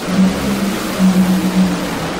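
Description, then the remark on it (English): Two drag racing cars roar down the track in St. Louis with a loud, steady engine drone and a broad rush of noise, pulsing slightly in volume over a couple of seconds, with no voices. “Leah racing for her points light. Tony just racing for fun.”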